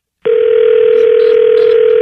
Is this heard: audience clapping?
no